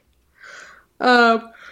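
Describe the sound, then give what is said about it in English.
A tired person yawns: a breathy intake followed by a loud, drawn-out voiced groan that fades into a soft breath. “Well, I'm so tired. I'm yawning.”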